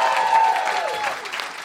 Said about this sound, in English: Thank you so much for coming out. Can we have a big round of applause for the European Beer Cafe? Yeah.